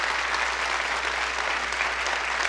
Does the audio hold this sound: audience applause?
yes